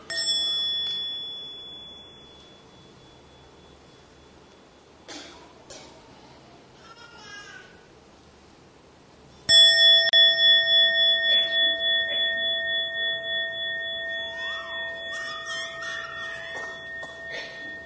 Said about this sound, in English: I listen, breathing out. This wonderful sound brings me back to my true home. We have enough time to memorize in order to enjoy breathing in and breathing out with the sound of the bell.